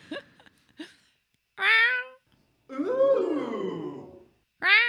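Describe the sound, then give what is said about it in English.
A person imitates a cat, giving three loud meows: two short and a long wavering one in the middle, with a few soft clicks and breaths at the start. “I've actually fooled cats.”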